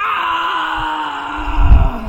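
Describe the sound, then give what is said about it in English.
A long, drawn-out scream from upstairs holds steady for about two seconds, loud and eerie, with a low rumbling thud swelling beneath it near the end. No one speaks. “Then a scream that was in a chill that would puck anyone's asshole came from the upstairs.”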